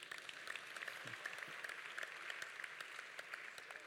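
An audience claps steadily for a few seconds, a dense wash of many overlapping hand claps at an even level, fairly soft overall, with no voices on top.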